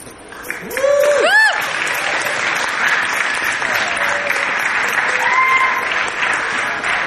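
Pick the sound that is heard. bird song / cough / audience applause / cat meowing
audience applause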